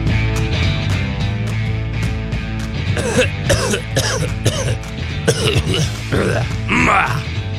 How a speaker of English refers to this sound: Who's coughing? I didn't hear anybody coughing. You hear anybody coughing?